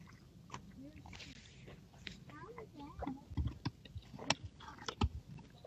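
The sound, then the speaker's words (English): Crunchy chewing of crispy fast-food chicken nuggets, with sharp irregular bites and crackles growing louder toward the end, while a faint voice murmurs in the background. “Here's the chicken nuggets. Ooh. Pretty good. Crispy looking.”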